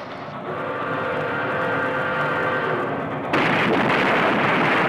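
A steady, heavy rumble with a faint high whine builds for about three seconds, then an abrupt, louder burst of crashing noise erupts and roars on until the end: the circus train, using the old spur track in the park, in a head-on collision.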